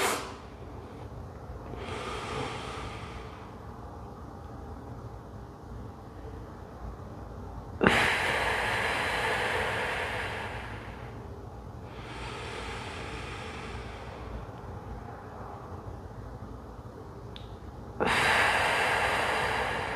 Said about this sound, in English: 478 breathing, and let's get inside.